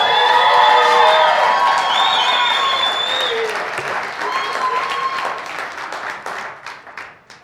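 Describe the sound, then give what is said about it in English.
A crowd applauds loudly with scattered cheers and whoops, the clapping dense at first and then gradually thinning out toward the end. “I don't know what y'all clapping for.”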